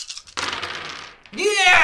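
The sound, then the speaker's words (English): Nine dice, rolled for a game stat check, clatter and tumble across a tabletop for about a second, fairly loud, after a brief soft rustle; a voice breaks in right after the rattling stops. “May I borrow some dice? How many do you need? I need, let's see, this is 6, 7, 8, 9.”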